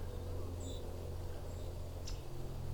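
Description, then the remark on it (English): A single faint, sharp tick of a yellow-rumped (myrtle) warbler call in a fall migration flock, heard over a steady low outdoor hum, with a few soft high chips just before it. “There's our yellow rump warbler, also known as a myrtle warbler.”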